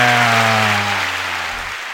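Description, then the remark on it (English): A canned crowd-cheering sound effect played from a soundboard ('noise machine'), the 'crowd goes wild' effect: a dense, loud roar of cheers with a steady low horn-like drone underneath, holding for about two seconds and easing off slightly at the end. “Hit the noise machine. Which one? The crowd goes wild.”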